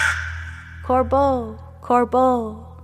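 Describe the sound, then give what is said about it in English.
A crow caws twice as it spreads its wings and lifts off into the sky, each call a short clipped note followed by a longer, drawn-out and falling caw, loud over a steady low hum. “The bird spreads its wings and lifts off into the sky.”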